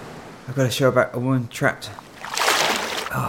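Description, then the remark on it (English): A voice speaks briefly, then water splashes in a short, fairly loud burst of churning as someone swims strokes at the surface. “I'll just swim here.”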